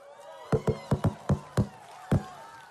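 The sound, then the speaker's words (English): Scattered applause from an audience: about seven sharp, irregular hand claps ring out over a faint murmur of voices, with a brief pause before the final clap. “Now, why would you be applauding?”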